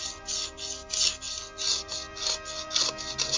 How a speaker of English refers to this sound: Is someone sawing wood? Yeah, I was not sure. Yeah, somebody was like preparing steaks to kill a vampire. That's what it sounded like. I know. I just wiped like some dust off my computer. Maybe that was.